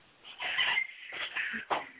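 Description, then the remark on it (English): A dog barks outside in the evening in three drawn-out, whiny bursts, fairly loud but muffled, with short gaps between them and no one talking. “Well, why can't he just stay outside? Well, he's barking.”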